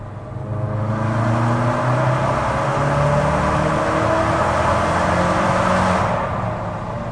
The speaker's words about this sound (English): Do you want to hear some exhaust? Yeah, let's hear some exhaust. Okay, ready? We're going to go third gear from 3,000.